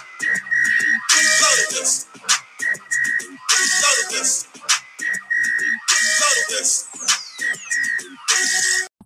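A shrill whistle is blown over and over, loud and close, mixing long piercing blasts with short sharp chirps in an uneven rhythm, with no voices.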